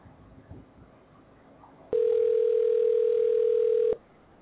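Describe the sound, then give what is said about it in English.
One steady two-second burst of a telephone ringback tone, loud and even, as a caller waits for an answer, preceded by a quiet stretch of faint background noise. “We're waiting for the phone to be answered right now. It's ringing.”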